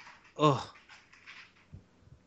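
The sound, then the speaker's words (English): One sharp, loud dog bark, followed by a moment of quieter shuffling and a couple of soft low thumps. “dog, be quiet.”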